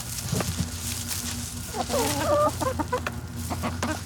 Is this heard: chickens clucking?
yes